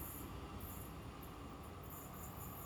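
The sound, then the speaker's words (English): A steady, dense rumble of a train rolling along in Australia, heard from inside a carriage, with continuous low-end roar and a faint high whine drifting above it. “a Framework introduction recorded for us by Jeremy Hegge on a train in Australia”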